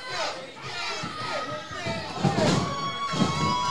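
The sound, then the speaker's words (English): A crowd of wrestling fans chants a name in rising, repeated bursts, with dull thuds landing under the noise. “You hear the crowd going, chanting Vincent.”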